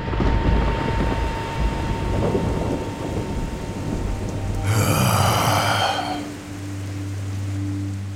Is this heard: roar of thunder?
yes